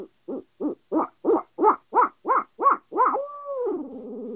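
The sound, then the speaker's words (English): A hand-blown owl call rises through a rapid series of about nine rhythmic hooting notes, building in volume, then ends in a drawn-out descending laugh-like wail made by opening the bottom of the hand and putting more air to the call. Loud, with no talking. “And then if you want to laugh in that, you know, I know we're going past the roll a little bit, but get into that laugh and just open the bottom of your hand and put more air to the call, and you get the.”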